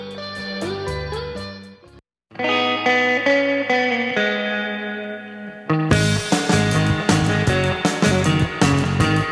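Instrumental surf rock with twangy, effects-laden electric guitar, cutting out for a brief pause, swelling back with sustained chords, then bursting into a louder, driving section with punchy drums. No voices.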